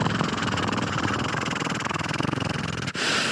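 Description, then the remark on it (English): A steady, loud mechanical whir with a rapid chopping pulse, like helicopter rotor blades beating over an engine drone, briefly cutting out near the end before resuming with a harsher hiss. “And here comes this helicopter.”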